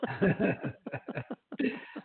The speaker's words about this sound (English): You were stuttering. Well, I'm clearing my throat.